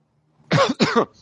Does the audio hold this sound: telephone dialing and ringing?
no